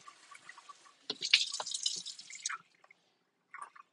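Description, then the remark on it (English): Water splashes and rinses down a sink drain in a bright, hissing burst lasting about a second and a half, then trickles off into scattered drips and one brief final splash. “And then everything that did not get got either of those two times can be rinsed down the drain.”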